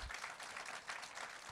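An audience at a church applauds the director of its Hispanic ministries with steady, dense clapping that sustains evenly throughout, many hands blending into a continuous crackling wash without pauses or voices.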